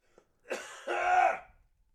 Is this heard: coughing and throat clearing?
yes